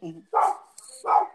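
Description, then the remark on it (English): A dog, the son's dog being dog-sat, barks twice, about three-quarters of a second apart, each bark short and loud, with a faint low murmur before the first one. “I'm dog sitting here.”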